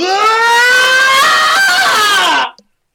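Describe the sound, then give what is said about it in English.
A loud, sustained human scream in a screaming contest, lasting about two and a half seconds, rising slightly in pitch and then dropping off abruptly into silence, with no other voices. “So let's have a screaming contest.”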